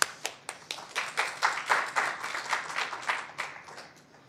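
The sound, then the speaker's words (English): Applause from an audience at the Cato Institute, welcoming the legal director of the Institute for Free Speech to give a brief presentation: a dense patter of many hands clapping that swells over the first second or two, holds steady, then begins to thin out toward the end. No voices are heard. “I hope you'll all join me in welcoming him.”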